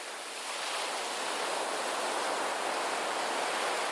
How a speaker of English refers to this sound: He spun in a circle, searching for the least hard patch on the very hard boulder on which he sat, and scowled down at the waves crashing into the shore below.